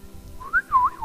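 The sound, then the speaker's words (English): A person whistles a short, warbling tune that swoops up and down, imitating birds whistling in the morning. Clear, it lasts about a second, with no talking. “Hear them whistling in the morning.”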